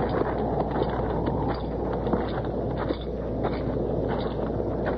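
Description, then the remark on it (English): Horses' hooves plod along at a slow walking pace as the horses are led over to a barn in the rain, a loose clopping rhythm of muffled thuds over a steady low rumble and noisy background, with no voices. “You take Keel and the horses over to the barn, Chester.”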